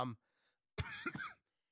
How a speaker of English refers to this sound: Excuse my cough here.